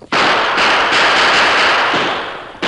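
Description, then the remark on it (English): A loud, dense volley of gunshots fired from horseback by the Lone Ranger and Tonto over the heads of two outlaws. Several blasts run together into a harsh, crackling roar for over two seconds before a final sharp report. No voices are heard. “Tonto, fire over their heads, but don't hit them.”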